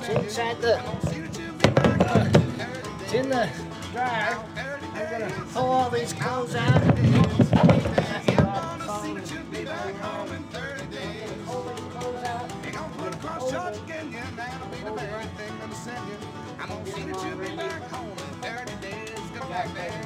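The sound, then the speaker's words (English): Clothes are pulled out of a clothes dryer, recorded with a microphone placed inside the dryer, with continuous rustling and soft thumps of fabric. Louder bursts of shuffling come early and again midway, then the handling settles into steadier, quieter rummaging. “money to put a microphone inside the dryer, but I did that so that you all can hear what it sounds like when I take clothes out of the dryer.”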